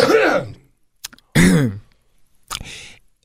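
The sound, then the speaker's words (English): A person clears their throat and coughs several times in close succession, loud, with a short pause between bursts and no speech. “Can't hit my cough button. Hold on.”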